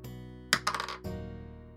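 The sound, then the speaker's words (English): A ten-sided die, rolled for a social check in a tabletop game, clatters across a hard tabletop in a quick burst of rattling clicks, then settles with a final knock on an 8. It is fairly quiet over a steady low background hum. “No, come on, don't cock the dice.”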